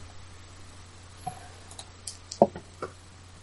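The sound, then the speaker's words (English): Two dice are rolled for damage in a game, rattling and tumbling across a hard surface with a short run of sharp, uneven clicks and clacks and one louder knock near the end, quiet; they come up two twos, a total of four. “I rolled two dice.”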